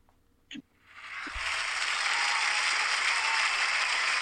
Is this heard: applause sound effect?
yes